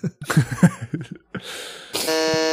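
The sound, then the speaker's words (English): A brief stretch of talking gives way to a rushing burst of noise, then a loud, steady, harsh electronic game-show buzzer that holds its nasal tone through the end, as a contestant buzzes in to answer a trivia question about Edgar Allan Poe short stories. “I don't know who buzzed first.”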